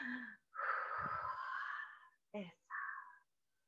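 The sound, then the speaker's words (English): A long, breathy yawn drawn out for over a second, followed by a couple of shorter airy exhales and sighing sounds. “I started yawning as soon as you started.”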